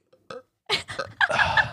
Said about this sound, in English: Sorry, I pulled away and then I realized I wanted to do it into the mic and I caught the tail end of a burp. I've been like burping up my coffee because like the acid and I've been moving away.